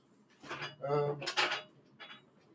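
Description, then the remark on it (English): Several quick rattling, crinkling bursts of handling noise as a plastic Dasani water bottle is grabbed and shifted among other items, with a short louder clatter in the middle and a softer rustle at the end. “Got a whole bunch of like Dasani water bottles from back when I was in quarantine.”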